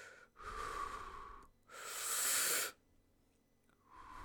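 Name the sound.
imitated heavy breathing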